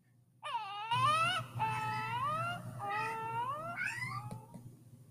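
A cat lets out a string of four drawn-out, wavering meows in quick succession, close and fairly loud, over a low steady hum with no talking.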